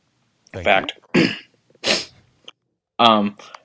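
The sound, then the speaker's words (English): A man's short, sharp cough stands out among a few brief vocal bursts, fairly loud, with short pauses between the sounds. “But you, I like the little cough after he said that.”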